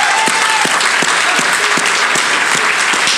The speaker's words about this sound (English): Young men under the age of 18, would you do me a favor and stand up? Let's give these young men a big round of applause.